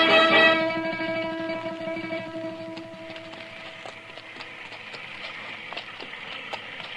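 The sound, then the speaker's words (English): Horse hooves clip-clop in a steady, moderate rhythm in the rain on the frontier, starting under a sustained tonal swell that fades within a few seconds, then continuing alone with a soft background hiss. “Come on, Chester, let's find our horse.”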